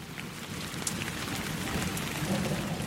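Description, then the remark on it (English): Steady rain falling, a dense continuous hiss with scattered drop patters and a low rumble underneath, moderately loud and constant with no voices. “That is fresh rain smell.”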